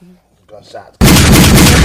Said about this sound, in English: Gunshots for that.